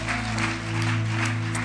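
Steady, dense applause from an audience for a pastor, a continuous loud wash of clapping over a sustained low musical hum throughout.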